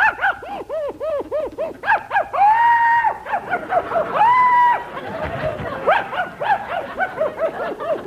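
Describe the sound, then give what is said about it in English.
A dog named Prince barks during a Lucky Strike cigarette commercial, in rapid, rhythmic bursts of high yips, broken by two drawn-out whining howls, loud and fairly continuous with no one talking over it. “Dog, wait a minute.”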